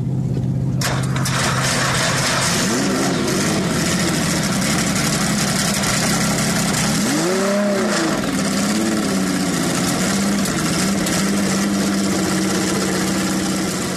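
A loud Porsche 917 race car engine fires up and settles into a rough, throaty idle, then the driver blips the throttle, with revs surging up and falling back several times.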